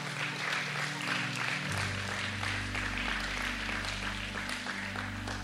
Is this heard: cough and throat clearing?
no